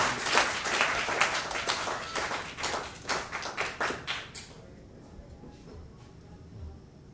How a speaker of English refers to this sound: And lend yourselves a round of applause for that.